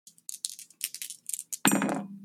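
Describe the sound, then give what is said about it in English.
Dice rattle and tumble across a table in a quick, uneven string of small hard clicks, ending in a louder clattering burst that rings briefly before settling, the roll coming up 10. No one speaks. “What'd you roll? It is a 10.”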